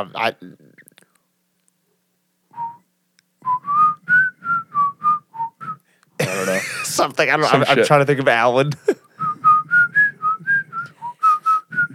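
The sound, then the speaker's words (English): Someone whistles an ice cream truck jingle: a bouncy run of short, evenly spaced notes, interrupted by a loud burst of noise and chatter, then resumed. Brief speech comes before the whistling. “How does an ice cream truck go?”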